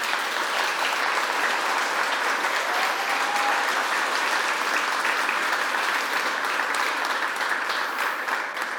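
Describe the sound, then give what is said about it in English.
Steady, sustained applause from a crowd for standing 2022 graduates, a dense wash of many hands clapping at an even loudness throughout with no speech standing out. “They're clapping because they're shocked that y'all made it.”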